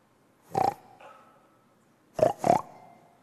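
A pig grunts three times: one loud, nasal grunt, a pause, then a quick pair of grunts. A faint hum fills the gap, and no one speaks.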